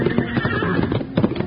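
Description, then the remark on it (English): Horse hooves galloping through the night in a quick, rolling rhythm, steady, with faint whinnying mixed into the busy clatter: Colonel Chandler's big black horse, with Wild Bill Hickok and Jingles racing on its heels. “Keeping close on the heels of Colonel Chandler's big black horse, Wild Bill Hickok and Jingles raced through the night.”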